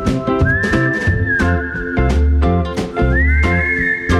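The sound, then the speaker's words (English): Someone whistles a melody over loud backing music, a clear sustained tone that slides up and holds, fades, then rises and holds again a few seconds later. “I gotta play all the songs and whistle.”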